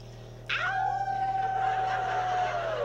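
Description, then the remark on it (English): People howl like wolves in one long, loud cry that rises quickly, holds a steady note for over two seconds, then slides down at the end, over a low steady hum. “Right, she-wolves?”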